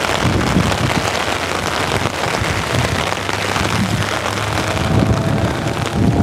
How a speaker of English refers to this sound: Do you like the ASMR of the cars driving by? That's pretty fun.